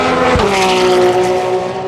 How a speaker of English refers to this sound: But like a whip car and a whip by in a race car sounds totally different.